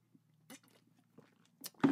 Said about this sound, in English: Another sip of water here.